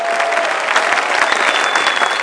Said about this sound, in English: Will you give Jesus a resounding clap?